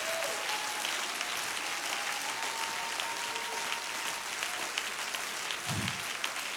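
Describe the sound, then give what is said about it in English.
An audience claps hands unto the Lord in sustained, dense applause, a steady wash of overlapping claps at an even loudness for several seconds, with a faint tone and murmur underneath. “Why don't you clap your hands one more time unto the Lord?”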